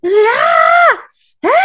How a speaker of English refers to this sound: I feel so bad, because she genuinely sounds scared. Like, she is terrified. Her voice is trembling, honey, like, poor thing. Yeah, she was. I was getting annoyed with her screams, though,